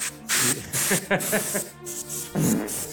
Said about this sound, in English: Enjoy the dulcet tones of the duster.